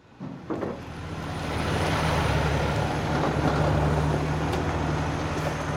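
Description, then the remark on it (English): Metro construction site beside a freeway, just east of downtown Los Angeles: a loud, steady roar of traffic and heavy engines with a low droning hum, rising in the first second and then holding constant, with no talking. “I'm at a construction site for Metro, just east of downtown Los Angeles. We're next to a freeway.”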